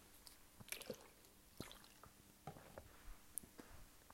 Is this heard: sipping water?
yes